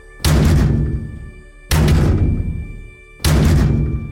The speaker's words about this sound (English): This time, three loud knocks.